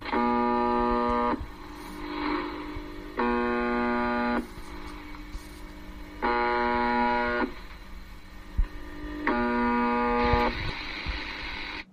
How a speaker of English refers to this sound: a Russian station known as the Buzzer. And in fact, we've got a little sample of the Buzzer.